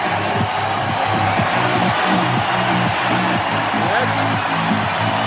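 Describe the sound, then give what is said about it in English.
A large baseball stadium crowd gives a standing ovation as a player comes to bat for the first time, cheering in a loud, sustained roar, with many voices blending into a dense wall of noise and rising shouts cutting through the steady swell. “Let's just listen to the crowd when he came to bat that first time.”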